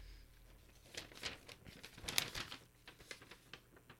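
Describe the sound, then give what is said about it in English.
Paper rustles and crinkles in a quick, irregular string of crisp bursts, soft, with one sharper crackle near the middle and no one speaking. “Who's that paper? It is. Oh, yeah, the playoff one.”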